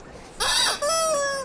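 A rubber chicken toy lets out a loud, squeaky squawk in two quick bursts: a wavering honk followed by a longer, steadier shrill wail, with no talking.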